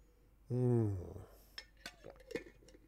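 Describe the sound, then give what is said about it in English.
Someone drinks water from a glass: a loud, drawn-out voiced swallow that slides down in pitch, followed by a scattering of light glassy clinks and soft taps. “And you might appreciate the style, the rather virtuosic style I employ when I drink water.”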